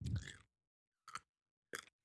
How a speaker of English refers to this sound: What was that? I couldn't hear you over the crunching.